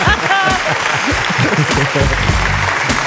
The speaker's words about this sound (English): Award winning. Where's our hand claps? I refuse to say award winning and not make sure I have the proper. There it is. There it is.